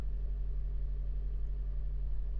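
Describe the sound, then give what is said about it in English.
A car engine runs steadily at idle, a continuous low rumbling hum with no talking over it. “Oh, that's a nice sound, isn't it? I'm not sure this car has ever sounded this good.”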